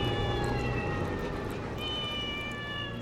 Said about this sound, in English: It was the cats.